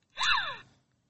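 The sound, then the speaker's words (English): A Poppy toy doll, set off by pressing a button on it, lets out a single short, breathy gasp with a slightly synthetic, sliding tone, heard alone, lasting just over half a second before silence. “And I guess whenever you touch it, she makes little giggly noises.”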